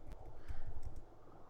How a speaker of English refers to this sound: This is going to be the podcast where you just hear me doing a lot of clicking, because I am...